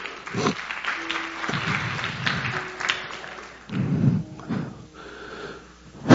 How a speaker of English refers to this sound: Clap your hands for this brother.